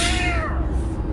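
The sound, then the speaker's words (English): A person voices a single cat-like meow, fairly loud, its pitch sliding downward before fading into a steady low background rumble. “The Kit Kat. Meow.”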